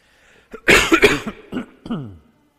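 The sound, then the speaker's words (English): A loud fit of coughing from a person still recovering from an illness of about four weeks: a harsh burst of several rapid coughs, followed by a couple of shorter separate coughs, ending in a throaty, voiced exhale. “The thing's gone, but the residual is still there, and I'll probably cough a few times.”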